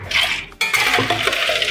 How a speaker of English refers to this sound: All right, so we pour some ice. Perfect.